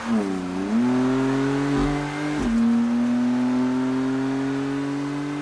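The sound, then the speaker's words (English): A car engine revs up, its pitch climbing, then settles into a steady hum as the vehicle pulls away, loud throughout with no voices. “This up and down movement makes the wheels of the car go. And then you're on your way.”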